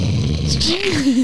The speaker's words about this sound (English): Featuring actual snores. Made it in.